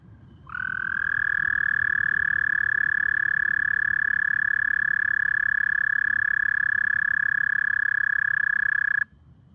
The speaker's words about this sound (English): That is an American toad. It's a male. Only the males call. If you live in the eastern half of the United States and you have a toad in your yard, there's a good chance it's an American toad.